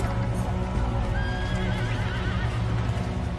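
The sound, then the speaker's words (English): A horse whinnies with a long, wavering cry over a steady, dense rumble as horses come through the surf onto the beach at Mill Bay in August 1485, while hooves clop continuously in the background; no one speaks. “his men come ashore, and we can picture them heaving munitions onto the beach, cannons, horses coming through the surf.”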